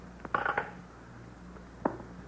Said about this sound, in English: You will hang up the phone, please.